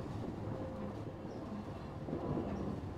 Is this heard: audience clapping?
no